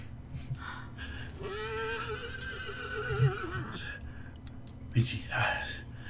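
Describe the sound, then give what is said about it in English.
A horse lets out one long, quavering whinny lasting a couple of seconds, clear, with a few soft thuds and rustling noises around it. “Help me get the horses.”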